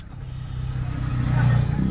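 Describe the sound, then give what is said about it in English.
A motorcycle engine revs with a low, throaty drone, its pitch climbing slightly as it grows steadily louder, as if approaching. “I hate people on their motorcycles.”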